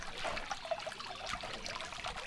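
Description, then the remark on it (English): A creek trickles and burbles steadily, soft gurgling blips over a continuous rush of flowing water, with no voices. The creek runs beside a trail and is flanked by a beech tree. “Take, for instance, a beech tree we find flanking a creek on one of the trails here.”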